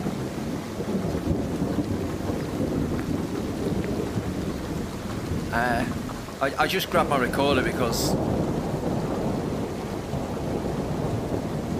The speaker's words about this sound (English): there's a big old storm brewing on the horizon. I don't like thunder and lightning. Middle-aged man doesn't like thunder and lightning.